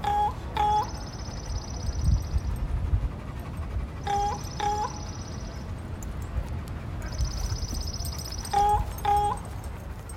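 A raven and a small bird call back and forth in three repeated rounds: short hoarse notes answered by a thin, high, sustained twitter, over a steady low outdoor rumble.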